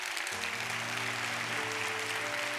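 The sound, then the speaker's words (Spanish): A crowd applauds the Lord steadily, with dense clapping filling the whole stretch at an even loudness, a low sustained musical tone droning underneath and no one speaking. “Un aplauso al Señor.”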